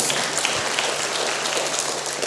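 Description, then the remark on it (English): An audience applauds for a GPS device: dense, steady clapping forms a bright, crackling wash of many overlapping hand claps that holds at an even level throughout, with no voices. “Let's clap for the GPS again.”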